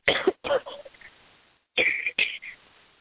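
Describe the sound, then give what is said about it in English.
A coughing fit: two harsh coughs, a brief pause, then two more sharp coughs, loud and raspy, with no talking. “Having a little bit of a coughing fit.”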